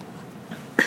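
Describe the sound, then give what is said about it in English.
A dog snores directly into a microphone, giving a single short, loud snore, a rough snorting burst near the end after a stretch of quiet low hum, with no talking. “Sorry, my dog snored directly into the microphone just then.”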